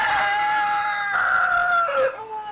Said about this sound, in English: Yeah, no, the rooster is fine. Good morning. That's not the sick one. We have two roosters.